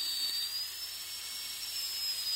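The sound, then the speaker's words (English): A dental drill used during teeth cleaning whines steadily at a high pitch, its tone creeping slightly upward over a couple of seconds, fairly loud with a hissy edge and no voices. “This sound is, you know, when you're getting your teeth cleaned, that drill, that dental drill, that's it.”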